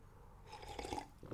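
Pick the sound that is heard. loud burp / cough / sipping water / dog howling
sipping water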